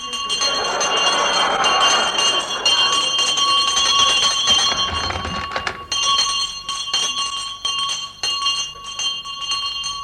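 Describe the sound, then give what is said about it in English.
A loud house bell in a big house, pulled by hand, rings continuously and insistently, its bright metallic clang sustained for several seconds with a rattling, jangling edge. “you need a loud bell in a big house like this”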